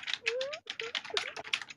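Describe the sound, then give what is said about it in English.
Rapid, uneven clicking of fingers typing on a computer keyboard, fairly steady, with a brief rising squeak in the background and no one talking. “right now I hear it sound like Hey Nick is typing”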